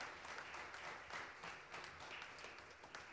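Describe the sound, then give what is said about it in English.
A crowd applauds two welcomed guests, many hands clapping in a dense, continuous wash of sound that holds at an even level throughout, with no voices rising above it. “Un aplauso para ellos. Give them an applause.”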